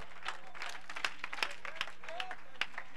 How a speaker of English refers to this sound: Oh, I wish that somebody would clap their hands and give God praise.